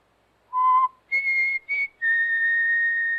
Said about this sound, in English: I just whistled. That's all.